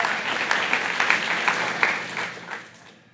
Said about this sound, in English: Can I get everybody to clap your hands one time and thank God for it? Come on.